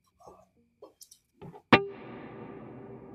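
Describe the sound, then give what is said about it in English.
A few short, quiet plucked notes lead into a loud overdriven guitar chord (drive on 7.8) at about 1.7 seconds that rings out in a long, washy natural hall reverb tail to the end: 8-second reverb, room size 10, 100 ms pre-delay, mix 23.9%. “It's a long reverb, 8 seconds, room size on 10, a pre-delay of 100 milliseconds, and the mix is on 23.9%.”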